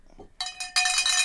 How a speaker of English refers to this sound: It affects, this is the humdinger bell. Yeah. We got to get a sticker on here that says humdinger. Yeah. This for when an episode is a humdinger.